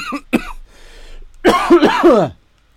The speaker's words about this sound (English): So, no, don't start coughing. Oh, no.